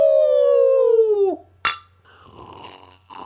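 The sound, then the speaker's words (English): A single sharp, bright clink of glasses touching in a toast before tasting a drink, right after a drawn-out falling vocal tone, followed by faint rustling and a brief soft ring. “Let's cheers this and give it a try.”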